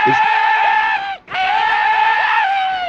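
A video game gun fires living, screaming bullets: two long, loud, shrill wailing screams, separated by a brief break, dominating, with no talking.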